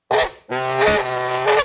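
A Canada goose named Sneakers honks twice, loudly: a short blaring call, then a longer drawn-out one with a harsh, nasal, strongly harmonic tone. No one speaks.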